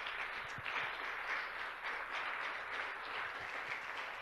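Steady crowd applause with many hands clapping at once, a dense crackling wash of sound that holds at an even level for several seconds without voices.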